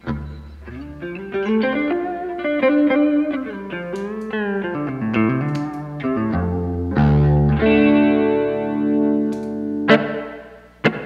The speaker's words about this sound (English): I have a Strymon Flint pedal that I love the reverb on. I use this 70s.